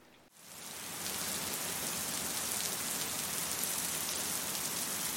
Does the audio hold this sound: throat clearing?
no